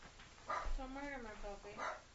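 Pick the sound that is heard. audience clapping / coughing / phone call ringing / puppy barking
puppy barking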